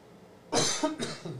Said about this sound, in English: Your coughing gets you stoned. It gets you stoned when you cough and shit.